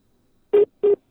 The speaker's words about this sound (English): No, I don't think we've lost him, but I heard a beep beep. I think somebody's trying to call in. Might be on his phone.